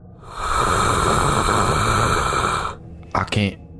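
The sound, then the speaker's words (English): A person voices a character's speech heard as an ordinary crocodile hiss without a communicator on: a long, harsh, breathy hiss lasting over two seconds, followed by a couple of short guttural vocal bursts. “And Cletus, for the first time in a very long while, you hear Steve's voice as an ordinary crocodile hiss without your communicator on.”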